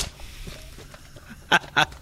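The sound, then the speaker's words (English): Two quick, loud ripping bursts of a printed-out sheet of paper being torn up, one right after the other, following a stretch of faint background noise with no talking. “I hope the mic picked up the ripping of the paper.”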